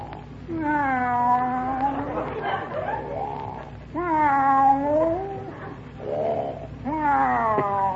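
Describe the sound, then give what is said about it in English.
A man snores in a comic imitation of a cat, heard from the other room, making three drawn-out, wavering meows spaced a few seconds apart with breathy rasps in between, fairly loud. “What's he doing? Taking a cat nap.”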